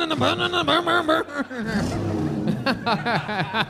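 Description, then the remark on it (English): Several voices imitate a revving jet ski engine, producing overlapping buzzing, warbling vroom sounds with rising and falling pitch, loud and continuous, sometimes broken by brief pauses. “If she gets a big one out, you guys can all rev your engines like you're on a. Like you're on a jet ski.”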